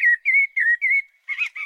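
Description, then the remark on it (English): A blackbird's song verse: a run of four mellow, fluted whistled notes at a relaxed pace, followed by a brief, busier and scratchier flourish at the end. No voices. “The individual notes are quite deep and mellow, a warm baritone.”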